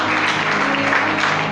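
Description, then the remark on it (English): An audience claps steadily for Jesus Christ for a sustained stretch, a dense, loud wash of many hands with a low hum underneath and no clear pauses. “Let's clap for our Lord Jesus Christ.”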